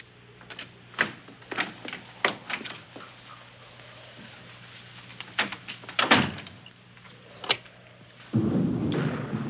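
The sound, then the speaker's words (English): A solid bedroom door is shut and then a series of sharp clicks and clunks follow as its lock and latch are worked, with a final heavier rustling thud near the end; no one speaks. “of us here tonight, and we're going to lock ourselves in my room.”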